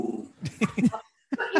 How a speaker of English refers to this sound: But he looks like just like a corgi for everyone listening who can't see him. And that's him growling. He's basically a puppy, though.